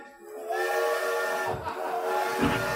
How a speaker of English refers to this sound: Here it comes now. A tiny, bashful train chugs into platform 12.